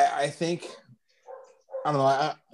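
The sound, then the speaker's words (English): A dog barks several times in loud, drawn-out bursts, with a brief pause in the middle before a longer final bark. The barking stands alone without talk. “Wow, somebody's dog completely has an issue with that.”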